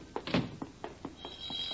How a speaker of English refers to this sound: Oh, the phone. I'll get it,